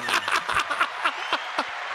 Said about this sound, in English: Hand claps again. You know I did it.